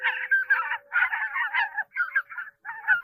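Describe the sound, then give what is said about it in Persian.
A gathered flock of seagulls calls all at once, harsh overlapping squawks rising and falling in bursts with brief gaps, loud, with no one speaking. “مرغانی دریایی گرد آمده بودند و مشورت می‌کردند.”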